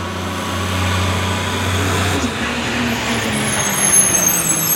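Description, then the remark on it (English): A truck goes by, its engine rumbling loudly, then gives way to hissing air brakes and a shrill, high brake squeal toward the end. No voices are heard. “But if a truck goes by and it's making that like engine noise and the squeaky air brakes and God forbid the backup beeping.”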